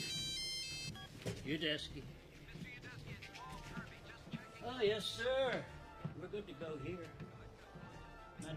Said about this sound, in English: Oh, yeah, I forgot about that stupid ringtone.